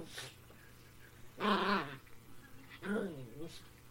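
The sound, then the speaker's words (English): A tiny black female dog named Whiskey lets out two high, wavering whines about a second apart, eager, over a low steady hum with faint rustling in between. “Tiny black dog is joining us and having a hard time containing her joy.”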